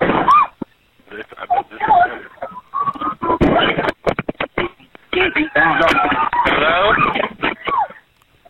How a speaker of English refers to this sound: Yeah, that bang was the gunshot.